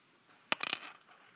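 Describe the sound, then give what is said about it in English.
A cup clicking and clacking against a hard surface: a quick burst of four or five sharp clacks in under a second, then quiet. “This cup doesn't work with this. I'm just saying. You have to take all those clicking and clacking out”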